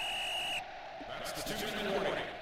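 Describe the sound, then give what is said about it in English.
A single steady, high-pitched whistle tone, a signal marking the close of the first half, holds for about half a second, then cuts off, leaving a bed of muffled voices and rough background noise. “Anyway, that signal, that whistle, is the signal.”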